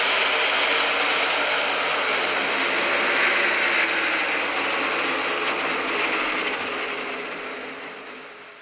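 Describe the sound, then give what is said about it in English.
A dense, continuous roar of stock car engines racing in the 67th running of the Southern 500, loud and steady for most of the stretch before easing off in the final seconds, with no voices. “The 67th running of the Southern 500 is underway.”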